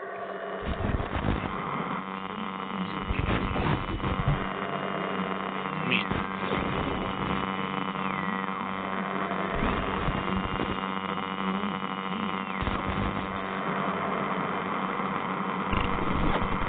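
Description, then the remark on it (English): A steady electrical hum with a crackling wash of static runs unbroken for the whole stretch, fairly loud, with small fluttering swells but no voices or other sounds. “No, it was just static.”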